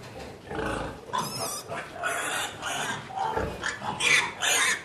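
pigs grunting

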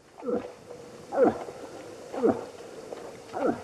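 elk call

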